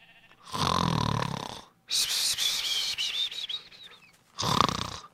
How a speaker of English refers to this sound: I'm surprised nobody has asked if in real life I snore.